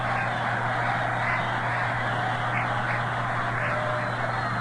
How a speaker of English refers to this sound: And this crowd is hooting and hollering. Even though they've got a first place mark up here, they're really letting them have it in this slump.